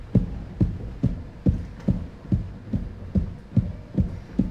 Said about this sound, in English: All right, relax your hands and stomp out your feet.